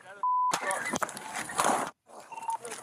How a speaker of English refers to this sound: Shots fired! Stop the car! A shot fired by the officer who was in front of the vehicle. It then rolls to a standstill.